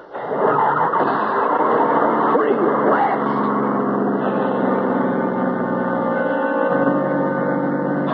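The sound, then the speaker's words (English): A car engine starts abruptly and keeps running loud, a steady droning rumble with shifting tones as the car pulls away and drives off. “There's the road. And Charlie's car. Please start.”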